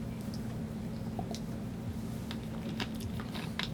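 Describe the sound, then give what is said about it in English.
Someone quietly sips water: a few small wet mouth clicks and soft swallowing noises over a steady low hum, with no talking. “I know there's a dead space there, but I was taking a drink of water to keep my mouth from drying out.”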